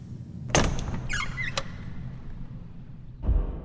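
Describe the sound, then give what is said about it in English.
A door to a mushroom opens with a sharp knock-like clunk, then a brief rising and falling creak of its hinges, a low rumbling hum, and a second dull thud at the end. “This is a door to one of the mushrooms. Should we enter?”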